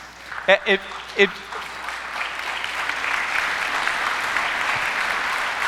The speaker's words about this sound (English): So you may have heard me say, you don't have to clap for that. That's kind of like, you can, I guess. That's cool.